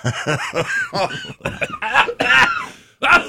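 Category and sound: human body sound, coughing fit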